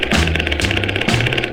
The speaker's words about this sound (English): when a noisy old jackhammer started digging up the street with a rat-a-ta-ta-ta, rat-a-ta-ta-ta-ta.